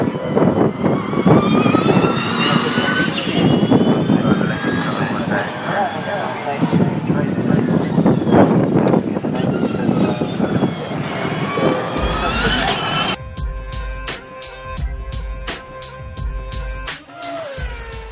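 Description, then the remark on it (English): Electric racing cars whine past with high, sweeping tones that rise and fall over a dense roar of track noise, before a short musical jingle takes over near the end. “hodgepodge in-between sound of F1 at the moment. But anyway, I'll let Robin and Jim completely rip the piss out of me now for coming to watch electric cars racing”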